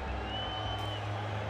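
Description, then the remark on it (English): A steady wash of outdoor crowd noise as crowds file into Electric Odyssey, an afternoon festival in Seward Park: a dense murmur of many voices with a low rumble underneath, continuous and fairly loud, with no single voice standing out. “An Uber ride later, I was there, and the crowds were already filing into this afternoon festival in Seward Park called Electric Odyssey.”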